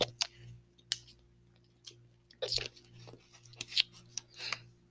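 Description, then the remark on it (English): Quiet sipping of water from a glass, a few short slurps and swallows mixed with small clicks and handling taps, with no one talking. “Let me get a sip of water.”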